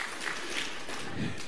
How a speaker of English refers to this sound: So give yourself an applause. Second service folks are the most spiritual people in America.